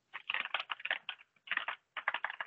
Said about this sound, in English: doing the keyboard.